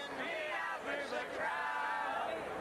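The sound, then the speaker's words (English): A large crowd at RFK Stadium cheers loudly and continuously, many overlapping voices blending into a sustained, slightly tuneful roar that fills the whole moment without any break. “Oh, this crowd, they're not doing a good job here. It's a little pitchy, dog.”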